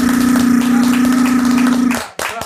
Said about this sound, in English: My new show is coming out, so. What? Yeah. Clap it up for that.